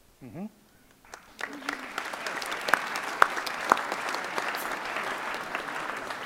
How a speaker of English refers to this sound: And first, I believe that the first questioner deserves some respect and applause for questioning you